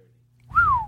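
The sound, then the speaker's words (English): A person whistles into a microphone: a single loud whistle that rises slightly then glides downward, lasting about half a second after a quiet start, with some breathy low-end rumble underneath. “Shouldn't whistle into the mic.”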